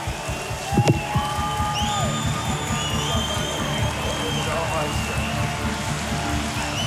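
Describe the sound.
Steady, dense audience applause at a church carries on for the whole stretch, a loud even clatter of many hands applauding a man, with some cheering voices and whoops rising above it.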